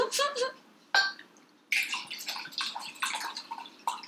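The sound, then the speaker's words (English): A drink is poured into a glass to refill it in several splashy bursts, the liquid gurgling and trickling, with short pauses as the pour stops and starts again. “Refilling.”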